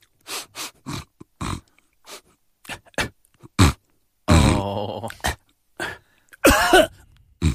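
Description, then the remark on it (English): A person imitates a man's fit of coughing and throat clearing: a rapid series of short, harsh coughs, then longer rasping, hacking bursts with strained vocal grunts, loud with no speech. “she had whooping cough on it”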